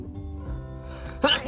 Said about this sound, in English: Fucking sneezed, man. In the middle of recording this shit.